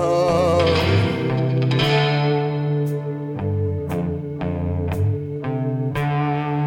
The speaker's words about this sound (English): And also that guitar, you think it's going to come in with like super distortion thing, but it's just like a little bit gritty. It's not super distortion. It's just strummed with restraint.